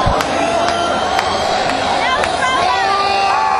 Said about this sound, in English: Yeah, they're screaming for more. We might get more from them. Lights back on, and here they come.